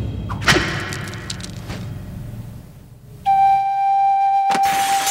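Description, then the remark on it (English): A sharp swishing slap knocks a sword out of a man's hand and it strikes the ground, followed moments later by a steady, bright metallic ringing tone and another short thud. No one speaks. “And his father just says no and slaps the sword out of his hand into the ground, which seems very dangerous.”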